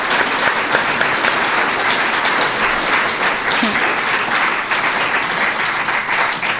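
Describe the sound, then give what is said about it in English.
Sustained applause from a debate audience for candidates Phil Lyman and Davina Smith, a dense steady clatter of many hands clapping at an even loudness for several seconds with no talking over it. “We need a round of applause for these candidates.”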